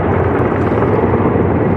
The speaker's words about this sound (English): A heavy lift helicopter that can haul more than 1,600 gallons of water, unloading it all on a growing wildfire south of Canem Lake.